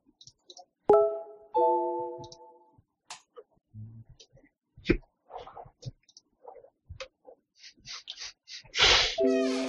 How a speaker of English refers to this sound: Hey, can you hear him on the computer beeping? Yes. It goes bong.